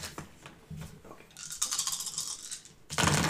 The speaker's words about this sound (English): So, pick up your dice and roll them as you move into the forest.